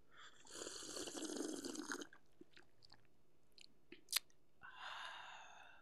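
sipping a drink

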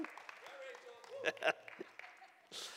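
audience cheering and applauding

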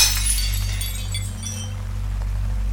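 window glass smashing

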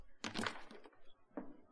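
whip crack

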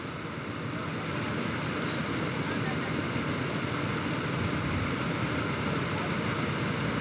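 waterfall rushing water

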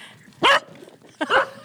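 spaniel barking

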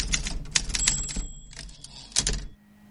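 typewriter typing sound effect

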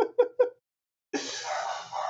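dogs barking

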